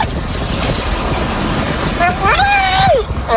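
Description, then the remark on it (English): Over steady road traffic noise, a person imitates a drunk college girl's party yell: a shrill, drawn-out "woo" rises, holds for about a second, then drops off, loud. “And for no reason, just starts doing this college girl yell.”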